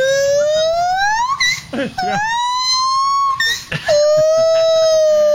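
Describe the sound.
A voice imitates a monkey mating call with loud, sustained rising whoops, three long siren-like wails broken by short breathy gasps, with no other talking.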